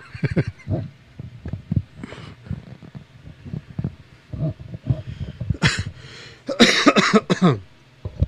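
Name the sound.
coughing fit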